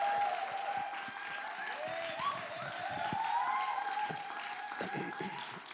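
An audience applauds steadily as a guest comes up to be interviewed, the dense clapping sustained and fairly loud throughout, with some murmuring voices mixed into the crowd noise.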